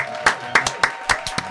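A few people clap in a loose, uneven rhythm to welcome someone arriving, roughly seven sharp, bright claps over a steady low background hum, with no voices over them.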